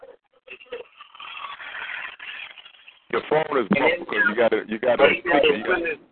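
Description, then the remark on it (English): A muffled, narrow-sounding telephone caller's voice crackles for a few seconds, followed by louder, clearer talking from a person on the line. “Hold on, your phone is muffled.”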